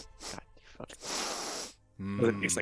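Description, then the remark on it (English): A voice mimics a long, loud nasal sniff of a cup held up to the nose, a breathy inhale lasting under a second, set between short bursts of speech. “Puts it up to his nose, gives it a real good sniff.”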